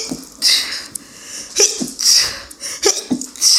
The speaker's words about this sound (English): Oh, I have to sneeze.